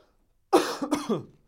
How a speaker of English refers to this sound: I'm coughing a lot today. It's crazy.